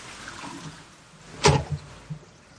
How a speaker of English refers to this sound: He recorded his toilet flushing and everything.